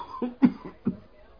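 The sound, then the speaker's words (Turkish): A short run of three or four harsh, chesty coughs in quick succession, moderately loud, with no talking over them, from a person who has been coughing constantly for two to three months. “Efendim 2-3 aydır böyle devamlı öksürüyor.”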